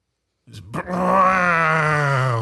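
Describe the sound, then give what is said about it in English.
A voice imitates a motorcycle being ridden in the snow in winter: a couple of short sputtering bursts, then a loud, steady, buzzy engine drone, held for about two seconds with its pitch sinking slightly. “And I hear this ominous sound of a motorcycle.”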